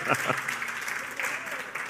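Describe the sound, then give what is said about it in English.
An audience breaks into applause for the announcement of a new person joining leadership, a dense, steady crackle of many hands clapping for about two seconds, with a few voices mixed in underneath. “Y'all just clap for that, okay?”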